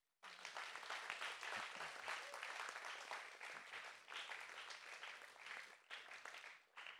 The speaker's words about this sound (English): Let's give these men an applause.